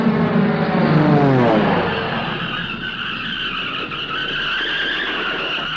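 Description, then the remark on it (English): A loud, sustained tire screech as a plane lands, its tires skidding on the ground, with a harmonic squeal that sweeps upward, then settles into a steady high-pitched skid over low rumbling, with no voices. “He's bringing the plane down. Gravity's helping.”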